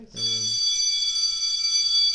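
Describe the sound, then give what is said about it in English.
A bell rings continuously for about two seconds, a loud, steady, high-pitched shrill with no break, cutting in sharply after a brief murmur of voice at the start. “There's the bell for the longest, World's Strongest Man.”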